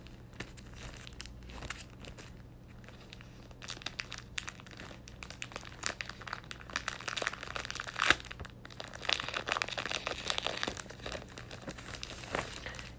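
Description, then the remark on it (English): Old magazine pages rustle and crinkle, a steady stream of dry papery handling and flipping that grows busier and louder toward the end, with no one talking. “Oh, this is crazy to look through these old pages.”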